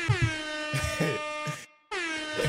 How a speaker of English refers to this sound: Y'all don't need the air horn, fam.